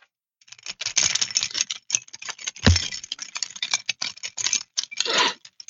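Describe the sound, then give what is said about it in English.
A bunch of keys jangles and rattles in quick, uneven bursts, fairly loud, shaken back and forth for several seconds with no one speaking. “It's interesting the way your eyes just follow the keys back and forth.”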